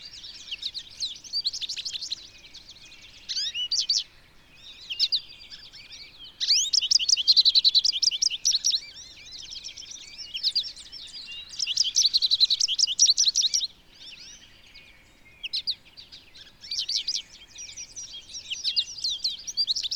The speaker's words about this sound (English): I come across several American goldfinches. I love their sweet little calls and lively songs.